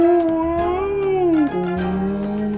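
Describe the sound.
A person's voice imitates a whale call: one long, drawn-out moaning tone that wavers and then slides lower, sustained for a couple of seconds, fairly loud.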